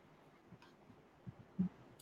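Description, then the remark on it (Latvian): A few soft, quiet clicks as a button on screen is clicked, spaced irregularly against faint background hiss, with no one talking. “Tagad ir ēteris, ēterim kā smuka, un reku blakus ir augšā rakstīts zīkašs, un reku es nospiežu zīkašs.”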